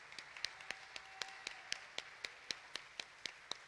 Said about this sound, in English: If you can just come up front, could we give a round of applause as they come? Amen.